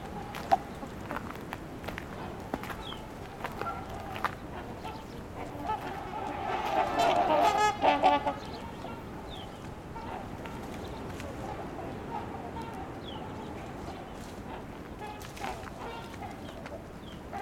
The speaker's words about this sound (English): Trumpeter swans have split into two groups, one headed to the beach and the other half just staying at the parking lot. That smaller bird call there is house sparrow.